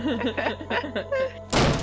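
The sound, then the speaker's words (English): A voice murmurs briefly, then a sudden loud thunk bursts in near the end as a door is flung open hard and bangs. “the other side of the door, Jarell was listening in and waiting for the correct moment and to enter. And flings it open”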